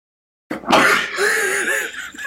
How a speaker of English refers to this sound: Bless you. I think that's the first sneeze that we've had on the air. I think it is. I couldn't get to the mute button. Couldn't get to the mute button fast enough.